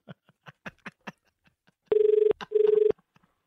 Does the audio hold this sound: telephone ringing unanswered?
yes